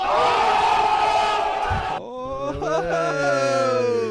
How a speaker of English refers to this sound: Oh! Crowd noise.